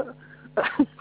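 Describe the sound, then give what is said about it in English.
A single sneeze, a short sharp intake followed by an explosive burst, muffled as if over a phone line, with a low steady hum in the background. “Yeah, thank you. Bless you.”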